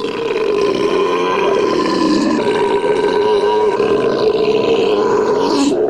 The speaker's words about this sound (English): Ladies and gentlemen, now the moment you've all been waiting for. The belching contest.